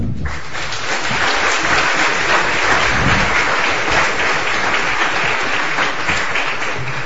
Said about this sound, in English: Thank you. Well, with all those applause, why go on?